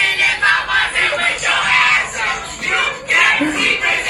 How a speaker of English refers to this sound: Why are we all screaming this shit right now? Dude, everyone was screaming.